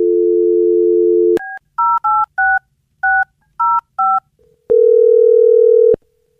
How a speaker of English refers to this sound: Well, I'm going to dial her phone over right now and see if we can figure out what happened. Here we go.